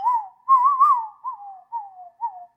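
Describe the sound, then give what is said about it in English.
A person whistles in wavering, gliding tones imitating wind blowing through the woods on a crisp November night: one long swooping phrase, then three shorter falling whistles, with no talking. “A rare whistle blows by.”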